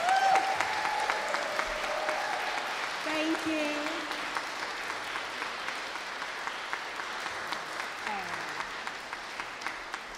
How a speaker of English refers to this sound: Now, before I start, I think they all need a big round of applause.